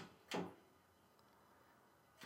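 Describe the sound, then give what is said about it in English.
A shelter door's latch clicks sharply twice, with about two seconds of near silence between the clicks, as the handle is tried and the door does not open. “It's going like one little click, but it seems like it has to go more clicks.”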